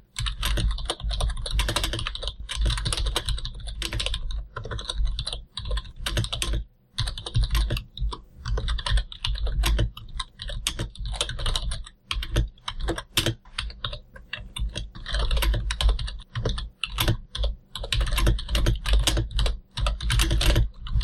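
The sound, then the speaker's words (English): Continuous rapid typing on a computer keyboard, dense clattering keystrokes with brief pauses, loud and steady throughout with no voices. “You need to find a new keyboard. Find sticks when you type the keys.”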